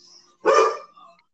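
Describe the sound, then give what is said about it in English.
A single loud, harsh bark from the speaker's dog, mad at a cat it won't allow to go past, bursts out and fades, followed by a faint whining tail; quiet tonal background sounds before and after. “He's actually an ass because he's mad because the cat, he's not allowing the cat, to go past anywhere.”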